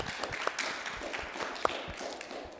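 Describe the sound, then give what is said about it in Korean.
A crowd in a church applauds a person coming up to give a testimony, with a steady, dense patter of many hands clapping, fairly soft overall, with a few sharper individual claps standing out and no voices. “다시 한번 박수해 주시기 바랍니다.”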